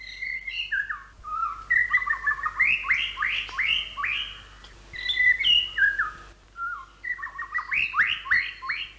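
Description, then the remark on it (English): A male white-rumped shama sings to attract a female: a rich, varied song of melodious trills and flute-like whistles, phrases rising and falling in quick succession, clear with a faint low hum beneath. “The series of melodious trills and flute-like whistles that make up the male's song when he's trying to attract a female can often be heard year-round.”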